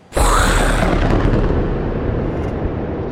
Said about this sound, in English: As best as anyone who was there can tell, lightning struck the rock. And it just...